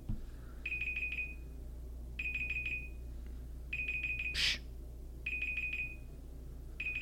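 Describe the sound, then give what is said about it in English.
A camera beeps in repeating bursts, each a quick series of high-pitched pulses, sounding about every second and a half over a low steady hum, with no one talking. “It's just going to beep for a second.”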